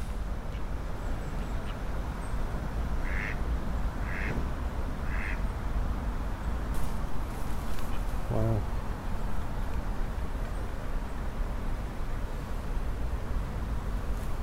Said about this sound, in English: The moorhens are about, and the coots, and of course, my favourite ducks. It's still quite dark here, weirdly. It's shaded by all the trees, so it's not the warmest of spots. But here come the ducks. Hi, guys.